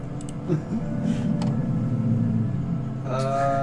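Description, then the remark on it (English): A deep, rumbling roar that rolls on steadily for several seconds with a low growling texture and echoes through a cavern, followed by a brief higher, tonal cry at the end. “You guys hear that in echoing through the cavern.”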